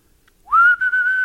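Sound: person attempting to whistle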